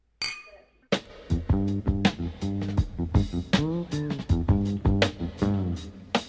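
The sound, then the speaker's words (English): A brief, bright clink of glasses of beer in a toast rings out at the very start, then voices take over, talking animatedly for the rest of the moment. “Cheers.”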